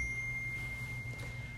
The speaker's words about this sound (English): Wow, who left their sound on their phone?